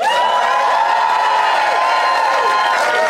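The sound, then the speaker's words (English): A Phoenix audience cheers and applauds loudly to vote, about three seconds of a dense steady roar of clapping with high whoops and shouted voices rising above it. “then applaud now.”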